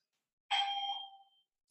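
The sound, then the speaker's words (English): A single doorbell chime rings out clearly after a moment of silence, its bright, bell-like tone fading away over about a second, with no one speaking. “Somebody rang the bell.”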